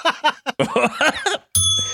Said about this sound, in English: So, hey, listen. I got to get rid of this bell. I'm going to be dinging all night.